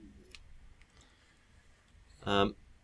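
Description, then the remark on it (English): Typing on a computer keyboard while inserting diacritics into text: a few faint, scattered key clicks followed by one loud, sharp clack, with quiet background noise in between. “Basically, my typing in the background here has shown me that on a well-designed font, the diacritic will be inserted below the descender.”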